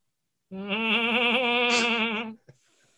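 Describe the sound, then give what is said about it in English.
One long, wavering goat bleat, loud, lasting about two seconds with a shaky, quavering tone, then a brief click before it falls quiet. No one speaks. “Oh yeah, they stole goats.”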